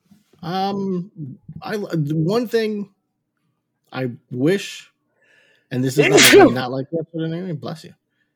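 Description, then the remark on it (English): Loud sneeze into a microphone, bursting out among short voiced gasps and vocal noises, with a harsh, rough crackle as the microphone is dropped on the floor, before the voice trails off. “You're sneezing into the goddamn thing and dropping your mic on the floor.”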